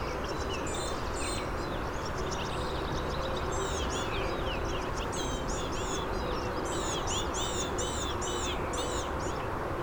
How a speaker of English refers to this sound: Wow, this blue-gray gnatcatcher is really singing.